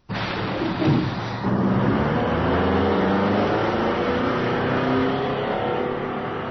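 A bus engine rumbles steadily while driving along its route, with a low droning hum and a brief heavier thump near the start, fairly loud, with no voices.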